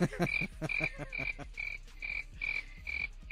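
crickets chirping sound effect

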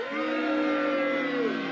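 crowd booing sound effect

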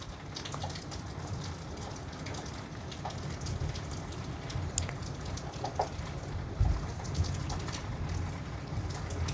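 rain falling

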